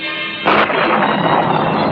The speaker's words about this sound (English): Parking lot. Toss that bomb. Is she going? A bomb! Wreck the cars!